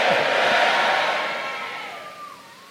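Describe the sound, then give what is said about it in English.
A large crowd shouts "amen" together during a church service in a loud, sustained roar that gradually fades over a couple of seconds, with no single voice standing out from the collective cry. “If you are there, shout a stronger yet, amen.”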